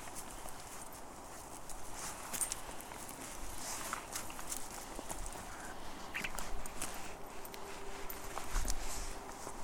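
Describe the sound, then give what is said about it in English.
Footsteps of people walking with a dog tramp through undergrowth, twigs and branches cracking and snapping underfoot in a steady, irregular stream of sharp crunches, with no voices. “So I'm going to try and walk up to this area pretty quietly with the dog, but you can hear us snapping branches under our feet here.”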